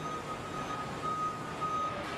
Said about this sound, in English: Oh, look, a robotic forklift. Interesting.